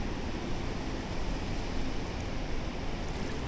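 A waterfall drops from the top of a cliff and pours out between two grey rocks in a steady, unbroken rush of white noise, full and even in loudness throughout, with a low churning rumble beneath the hiss and no voices; wind swirls the foliage around it.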